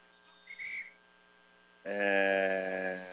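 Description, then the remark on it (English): A referee's whistle during a lacrosse game, called for a ball on the ground: a brief chirp, then after a pause a long, loud, steady blast that holds to the end, over a faint constant background hum. “And whistle ball on the ground.”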